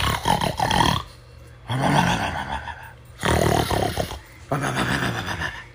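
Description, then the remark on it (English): A voice imitates a sleeping troll's loud, snotty snoring: four harsh, rattling bursts in a steady rhythm with short quiet gaps between, forceful, with no other talk. “And because he had such a snotty nose, it was really loud snoring, like...”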